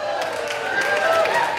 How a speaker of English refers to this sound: Don't clap for that, that was sad. There's no honor in that.